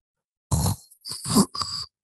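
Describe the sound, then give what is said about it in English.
A voice imitates the labored, painful breathing of a man whose lungs were filling with water after a stroke: three strained, groaning out-breaths in close succession, gravelly and wheezy, loud with brief gaps between them. “Like the most painful was his breathing. Every out breath was like this.”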